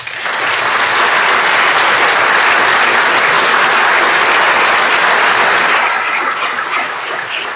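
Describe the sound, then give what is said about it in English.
Sustained audience applause: a dense, steady wash of many hands clapping at once, loud throughout the whole stretch with no voices standing out, thinning slightly toward the end. “A lot of clapping, not a lot of laughing.”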